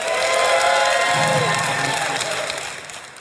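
audience cheering

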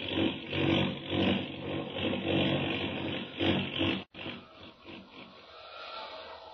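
airplane engine roaring

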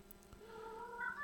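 cat meowing

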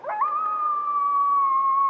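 coyote howling

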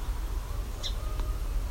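song sparrow ticking call

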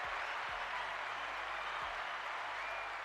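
hand clapping

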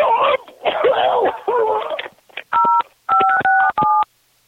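phone call ending

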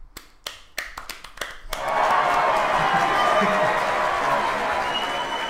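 crowd clapping and cheering

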